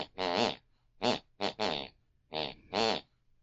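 An elderly woman's snoring drifts in from the next room: about six rough, tonal bursts in an uneven rhythm, some long and some clipped short, buzzing with a wavering pitch that almost forms a tune. No one talks.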